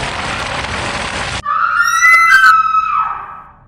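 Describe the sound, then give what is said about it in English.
A girl's piercing shriek rings out loud in a church, held for about two seconds before trailing off, right after a brief burst of harsh hissing noise that cuts off abruptly. “A shriek shatters the peace of the church.”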